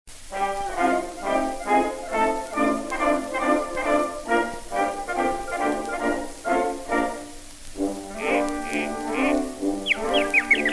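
An old phonograph record plays a bouncy instrumental passage, its tinny, thin-toned band pulsing in steady rhythmic bursts, with a brief pause before a brighter, reedier phrase starts up.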